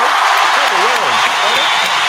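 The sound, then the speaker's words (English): An audience claps in a dense, steady wash of applause that holds loud for about two seconds, with a voice whooping or calling out over it. “Let me go ahead and give a round of applause to recovery.”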